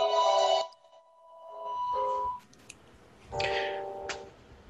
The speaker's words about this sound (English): Sorry about that. That's okay. A little phone ringing going on. That's okay. We can edit it out. Just wait till it stops ringing.